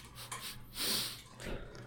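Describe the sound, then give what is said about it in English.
A person sniffs an alcoholic drink, with three breathy inhales in quick succession, the middle one loudest, over a faint low hum and no talking. “Oh god, I didn't want to hear you sniffing it.”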